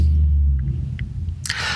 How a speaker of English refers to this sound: Here's a bus.